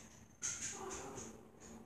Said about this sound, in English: how is he not barking? Oh, now he's barking.